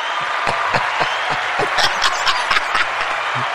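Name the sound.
applause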